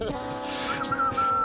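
A radio show caller whistles a thin, high note that sputters in short bursts before settling into a steady tone, with breathy air noise and some background murmur around it.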